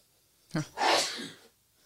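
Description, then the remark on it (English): A single sharp sneeze: a quick intake then an explosive burst of breath that trails off, with no talking over it. “You're just sneezing now.”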